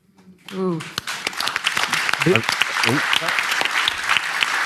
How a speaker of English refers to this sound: We're being too polite. We're not talking through the applause.